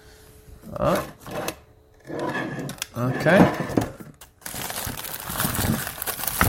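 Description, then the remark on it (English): Rummaging in a kitchen cupboard while searching for olives: glass jars clink and shift in bursts, ending in a steady rustling scrape, with a single brief spoken word partway through. “An olive hunt in the cupboard.”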